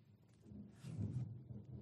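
A low, rolling rumble of thunder in the background swells briefly in the middle and fades back to a quiet murmur, with no voices present.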